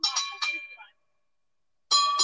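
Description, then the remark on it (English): Small ring bells ring out in two bursts with a silent gap between them, bright metallic tones at different pitches, loud and shimmering as each ring decays. “We got two. Oh, they're different pitches.”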